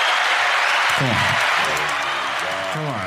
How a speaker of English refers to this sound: I mean, where else are you going to get like an applause track? Come on.